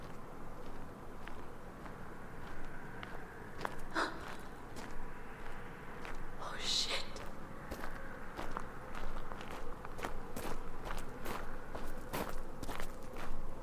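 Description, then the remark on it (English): Heavy, uneven footsteps thud irregularly, growing slightly louder and more frequent as they draw nearer, with a brief pause partway through and no voices. “Footsteps get closer. They're uneven and rough. Heavy feet slamming with each step.”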